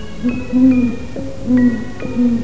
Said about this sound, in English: There it is. The owl's in my front yard, facing my house.